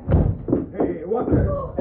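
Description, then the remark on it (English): Several heavy, booming thuds as a body slams repeatedly into a wooden door, loud, with voices audible in between the blows. “Want to take a run at that door?”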